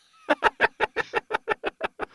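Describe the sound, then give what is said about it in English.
A hen clucks in a quick, even burst of about eleven sharp clucks, fairly loud, with no other sounds around it. “Yeah, the third step actually involves a blustering hen.”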